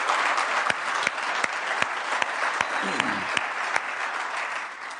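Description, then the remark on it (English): An audience applauds together to welcome those watching online, in a steady, sustained round of clapping, a dense wash of claps with a few sharper individual hand claps standing out, holding at an even level throughout. “So would you just, by round of applause, welcome anybody who's watching online with me right now with us?”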